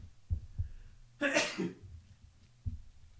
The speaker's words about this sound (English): If I don't cut out that sneeze, I hope it's not the monkey pox.